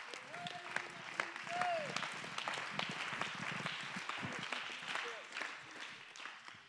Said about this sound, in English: Clap your hands in Jesus' name.